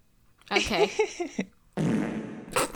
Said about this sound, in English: Oh, is that fart noise with reverb?